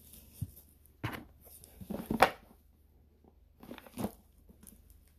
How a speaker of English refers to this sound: It seems like it has dice in it, which is nice. You can hear it shaking.